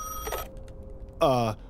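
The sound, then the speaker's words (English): A hospital telephone gives a short burst of ringing that fades out, then after a brief pause a voice speaks a quick word. “you pick up that phone. You can do the explaining from now on.”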